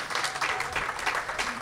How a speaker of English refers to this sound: Less of a strong response. Spotty. Yeah. No, it's fun how the applause is dying down more and more with each guest.